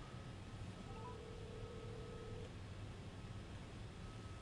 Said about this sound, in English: phone is ringing